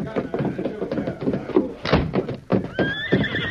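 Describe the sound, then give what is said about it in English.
Hooves clop in a busy, uneven run of thuds, and a horse neighs loudly, its whinny rising near the end over the continuing hoofbeats; the horses, Silver and Scout, are brought round the back. “Me bring horses round back.”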